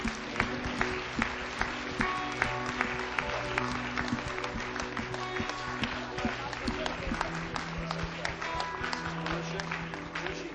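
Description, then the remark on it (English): An audience at a Christian prayer gathering breaks into sustained applause for a woman who has just been prayed for, a dense wash of many hands clapping at a steady, fairly loud level for the full stretch, with a low hum and murmur of voices underneath. “Let's give her a great clap, shall we?”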